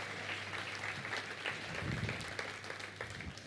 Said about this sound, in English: Thanks, guys. Give them a cheer as they head off stage.